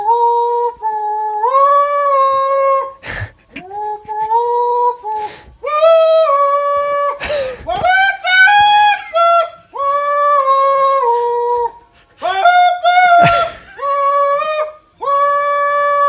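A squeezed chicken squawks out a loud, reedy tune like bagpipes: long nasal notes stepping up and down in pitch, broken by short gaps and sharp rattling bursts, with no talking.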